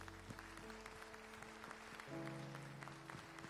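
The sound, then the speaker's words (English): A church audience applauds its pastor steadily, dense clapping over sustained organ or keyboard chords that shift pitch midway, the music swelling slightly louder in the second half. “Can we give our pastor a round of applause?”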